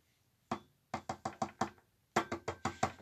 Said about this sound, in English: Oh, I think I hear a woodpecker. It is. Oh, look at this log. You can tell this woodpecker pecked this log a lot. Look at that deep hole.